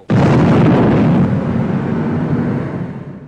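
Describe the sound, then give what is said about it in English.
A single loud cannon blast, fired when Travis lit the fuse, erupts suddenly, then rolls into a long, heavy rumble that fades slowly over a few seconds, with no voices present. “Then he tapped the ash from the tip of his cigar off and lit the fuse of the cannon he was standing next to.”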